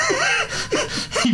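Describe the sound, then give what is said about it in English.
A voice acts out a fearful gasp: a few sharp, breathy intakes of air with a strained vocal edge, fairly loud, with no words spoken. “So when he would get to that rooftop, he wouldn't have gasped in fear.”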